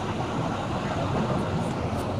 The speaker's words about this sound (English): I am on the bus to San Diego from Los Angeles.